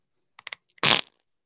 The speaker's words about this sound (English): You know the fun thing is like a whoopee cushion has one sound. You know what I mean? You can like kind of change it, and like a fart machine only has like five or six. This has infinite sounds of farts.